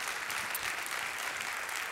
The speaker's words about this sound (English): You ought to all be clapping on that one.